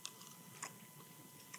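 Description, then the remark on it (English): Chewing on a tough snack, with a few sharp crunchy bites spaced irregularly over steady mouth sounds, fairly quiet and with no talking. “Takes a lot of chewing power.”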